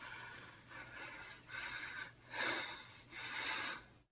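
Heavy, rhythmic breathing, with about four or five loud, rasping breaths at roughly one-second intervals and no talking.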